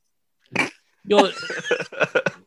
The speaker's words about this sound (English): I wish your dog would bark more.